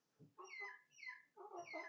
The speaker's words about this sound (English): the damn chicken's perched on the garbage can. At least he's not in the garbage can. Give it time.